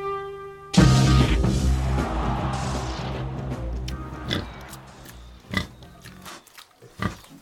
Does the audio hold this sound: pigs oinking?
yes